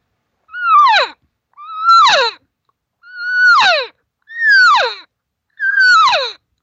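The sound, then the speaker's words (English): A human voice imitates a cow's pleading call, a standard cow mew with changed cadence used to invite others to come over, five times, each a loud, harmonic, moaning cry that swoops briefly and then drops sharply in pitch, evenly spaced with short silences between. “Here's the sound she makes when she's trying to ask something to come over where she is”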